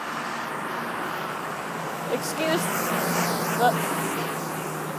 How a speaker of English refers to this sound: Excuse the FedEx truck for driving by me.